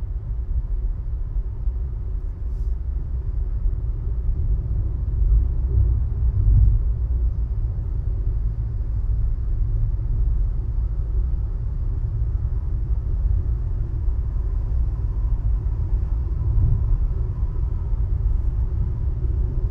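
A steady, low engine and road rumble fills the inside of a moving car, droning continuously at an even level with no voices and no breaks.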